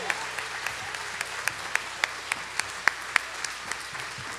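An audience applauding steadily for children who led worship singing, dozens of hands clapping together, with a few sharper claps standing out in a loose rhythm above the dense wash of sound.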